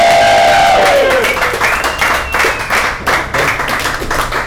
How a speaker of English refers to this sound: I want to prove to our home viewers that there are some people out there. So let's hear a round of applause.